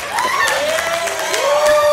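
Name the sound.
person clapping hands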